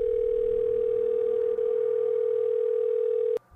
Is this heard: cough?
no